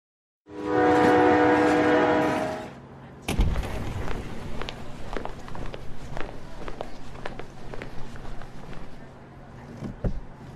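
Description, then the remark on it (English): A loud, sustained train horn blares for about two seconds as a passenger boards a train for a short ride, then gives way to steady rumbling and rattling rail car noise with scattered clanks and knocks. “Check in now with him as he boards a train destined for a short ride.”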